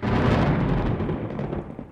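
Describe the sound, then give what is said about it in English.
A deep, loud rumble of thunder rolls on for a couple of seconds, heavy in the low end and slowly fading, with no voices over it. “Well, thunder means websites here on our little jet streaming show.”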